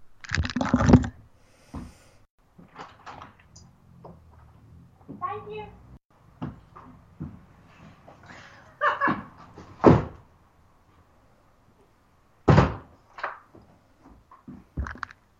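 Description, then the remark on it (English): Someone knocks and a door is opened for a UPS delivery person and later shut, with several sharp thumps and bangs spread across the stretch. Quiet, muffled voices and shuffling fill the gaps between them. “Somebody's knocking on my door.”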